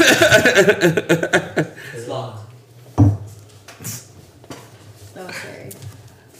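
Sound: door opening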